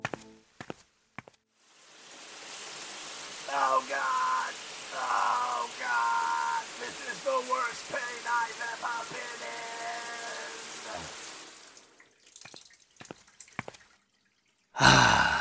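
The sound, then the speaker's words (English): Shower water runs in a steady hiss for about ten seconds, with drips and splashes. A voice makes drawn-out sighing, groaning sounds over the spray, then the water cuts off. “I think I need to go shower in toxic sludge.”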